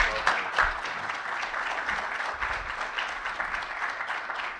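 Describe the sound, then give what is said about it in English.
A crowd applauds steadily for several seconds, a dense, even wash of clapping hands with no voices standing out above it. “Why don't we give a nice warm applause.”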